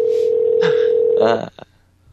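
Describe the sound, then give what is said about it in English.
A steady electronic telephone ringing tone heard over the line holds for just over a second and then cuts off, with faint voice-like sounds mixed in and no one answering. “Let's just let it ring for the rest of the”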